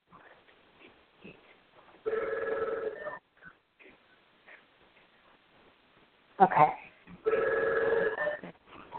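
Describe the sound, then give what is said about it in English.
A telephone rings twice in steady electronic bursts, each lasting about a second or two, while a voice speaks quietly in between over a thin, phone-like line. “Is that your phone? Do you want to? I can hear that in the background.”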